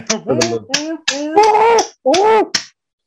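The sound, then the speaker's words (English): A quick series of about seven sharp, loud hand claps imitating a seal clapping, each paired with a voice doing honking seal-like barks in a bouncy, uneven rhythm. “If you can picture it, let's give a seal clap.”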